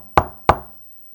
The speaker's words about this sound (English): Like that was it. On my door. 3 fast knocking.